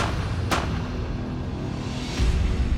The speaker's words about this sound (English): And then I start hearing the gunshots.